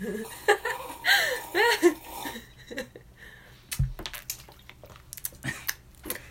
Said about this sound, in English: Wait, sorry, one second, I should take a sip of my drink. Okay, I'm going to take a sip of my drink too.